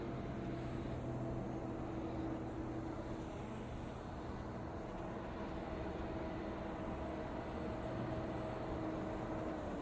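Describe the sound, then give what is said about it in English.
A tram rumbles steadily as it stops, a dense, even mechanical drone with faint humming tones running through it, holding constant in loudness throughout with no voices. “tram stops here, I'm going to try and grab him.”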